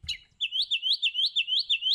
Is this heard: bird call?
yes